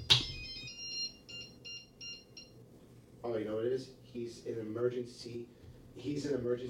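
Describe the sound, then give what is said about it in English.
A mobile phone ringtone chirps in a quick run of about six bright electronic beeps, then stops as a person begins talking over a low background hum; the call is from a contact set as an emergency contact, which overrides Do Not Disturb. “He's an emergency contact on my phone.”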